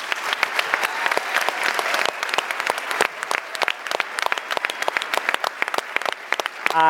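A large audience at an Intelligence Squared US debate applauds steadily for the debaters and Project Debater, dense overlapping claps at a strong, sustained level, with a voice briefly starting at the very end.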